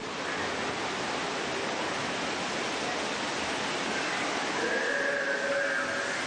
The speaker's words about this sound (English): And directly in front of us is a waterfall